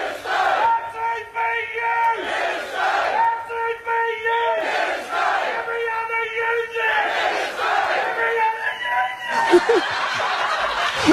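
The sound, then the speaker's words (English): A loud, long yell held for several seconds, its pitch wavering and briefly dipping between breaths, over a murmuring crowd, before trailing off into a short breathy finish. “I mean, what a voice so far. Quite the yell.”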